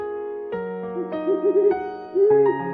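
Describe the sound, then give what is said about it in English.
An owl named Polly hoots several times in wavering tones, layered over a bright, sustained musical jingle introducing Marauder's Map fun facts, with no talking. “Hey, it's Polly, our owl. She's flying in with the fun facts.”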